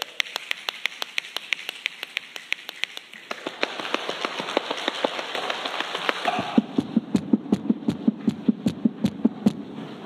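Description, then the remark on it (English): A church audience imitates rain with their hands: a soft rushing hiss of many hands rubbing, with a steady patter of sharp taps and snaps that builds into heavier thumping, like a downpour. “Church, we just made it rain.”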